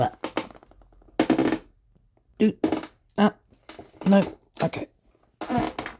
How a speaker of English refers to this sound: Ugh, this bloody chair. I need to fix this chair. It makes so much noise.